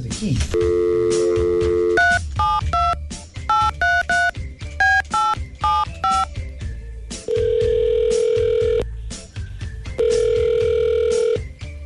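A phone call placed on the Kaola Show: a steady dial tone gives way to a quick run of about a dozen touch-tone keypad beeps, followed by two long, even ringing tones on the line, loud.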